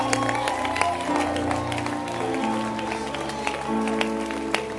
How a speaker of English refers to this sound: And he's saying that, clap your hands. That's all. Just obey and clap your hands. Clap your hands.